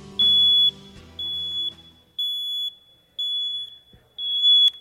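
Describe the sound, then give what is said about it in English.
A smoke alarm beeps loudly in five evenly spaced, half-second high-pitched tones, with some low background noise fading out early on. “That's this alarm here.”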